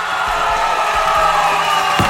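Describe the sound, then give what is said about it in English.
A crowd at the Memphis Home Maintenance Show cheers loudly and steadily throughout, a dense wash of voices with no one speaking clearly, punctuated by a few dull low thumps. “All right, crowd, let's settle down now.”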